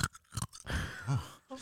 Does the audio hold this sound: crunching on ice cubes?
yes